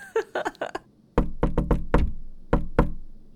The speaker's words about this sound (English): And then she'll get back and try to do, like, she wasn't sure, like, a coded knock.